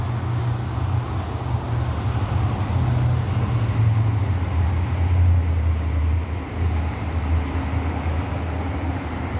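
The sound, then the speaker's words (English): A steady, loud low roar of an airplane passing overhead, holding constant for several seconds with a deep rumbling hum and broad background noise, no voices. “It is 9:04, that's another plane flying over.”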